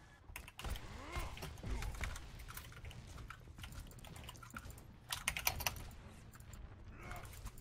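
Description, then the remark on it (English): Rapid, forceful typing on a computer keyboard, a dense stream of sharp clacks with a few harder bursts, over a low background rumble. “I'm going to record this one of these days and just make a documentary called The Abuse of Keyboards in the 21st Century”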